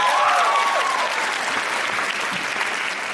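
Steady, dense applause from an audience for an audience member who spoke at the microphone, a broad rush of many hands clapping at an even level for about three seconds, with a brief high whistle or cheer near the start.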